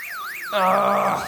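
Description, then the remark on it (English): The Captain's car alarm wails as someone is thought to be breaking into the car. A rising and falling electronic tone sweeps up and down in quick cycles, joined halfway through by a louder, steady buzzing honk layered underneath. “I think someone's breaking into your car, Captain.”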